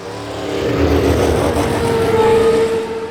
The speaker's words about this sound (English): Cue it. Cue the cars.